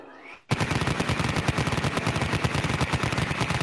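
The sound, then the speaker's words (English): A brief rising whine gives way to a loud, sustained burst of rapid-fire cannon gunfire, dense evenly spaced shots hammering continuously for about three seconds, punchy. “So I guess we can go into official rapid fire mode, Tim. We can. Here we go. Let's spin up the cannon.”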